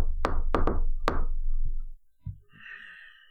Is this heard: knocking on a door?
yes